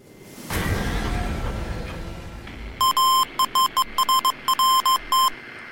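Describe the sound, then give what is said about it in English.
A burst of loud rushing noise gives way to a recording of Morse code: a steady, buzzy high-pitched tone keyed in a rapid run of long and short beeps with brief gaps, spelling dash-dot, dash-dash-dash, dash-dot. “Lol, I mean, dash dot, dash dash dash, dash dot.”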